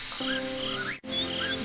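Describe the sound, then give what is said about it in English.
Crickets chirp in a steady, continuous chorus over a low droning hum, with a brief break of silence partway through before the chirping resumes at the same level. “Crickets are good, too.”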